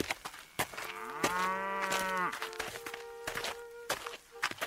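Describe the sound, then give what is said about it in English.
A cow lets out one long, drawn-out moo, fairly loud, while steady footsteps and hoof clops sound around it as the cow is led down a road toward a market. “And so Jack led the cow down the road toward the market.”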